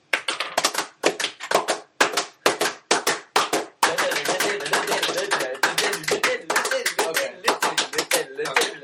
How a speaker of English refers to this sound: In the background, you hear coconut shells.